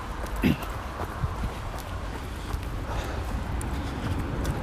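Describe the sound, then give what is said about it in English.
Footsteps of someone on a morning jog thud at a steady pace outdoors in the rain, soft, partly buried under a constant broad hiss of outdoor background noise. “Whilst I'm doing my morning jog, catching two birds with one stone.”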